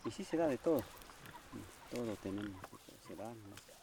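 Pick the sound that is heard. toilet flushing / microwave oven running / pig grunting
pig grunting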